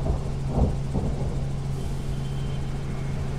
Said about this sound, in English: The noise is deafening. Is it the noise of the cars? Or is it the road itself crying?